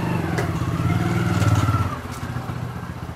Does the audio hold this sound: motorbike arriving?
yes